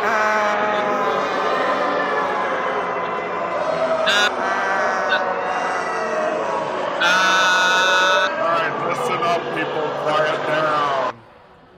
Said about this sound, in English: Why is everyone screaming? Maybe we should be screaming too.